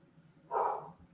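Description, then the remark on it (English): A single short, gruff bark from Rubble, an English bulldog: a mid-pitched burst lasting under half a second that rises sharply and fades, with no talking around it. “Somebody's dog is hurting there.”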